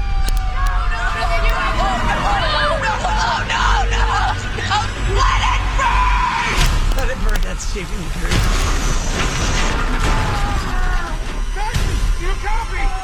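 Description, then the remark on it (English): A fire truck siren wails through a loud, chaotic movie trailer scene of a burning house, rising and falling over shouting voices, crowd commotion and crashing impacts in a dense, dramatic mix. “No, the fire truck.”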